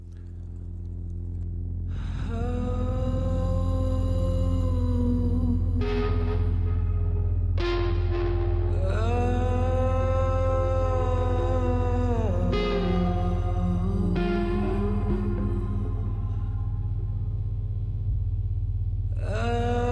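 A loud stretch of music: sustained, heavily processed tones ring over a deep droning bass, with new chords swelling in every few seconds and no talking throughout.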